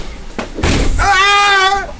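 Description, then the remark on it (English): A door is kicked in with a nanotechnology leg: two heavy thuds, the second a loud crashing slam, then a drawn-out high-pitched vocal cry. “Kick the fucking door down.”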